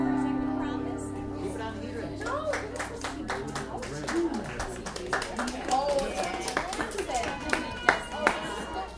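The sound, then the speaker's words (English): Busy coffee shop crowd noise with overlapping chatter and a steady hum, punctuated by scattered, sharp claps and thumps that grow more frequent toward the end. “How'd you like that crowd there? I thought that was pretty funny, so I thought I'd keep that in there.”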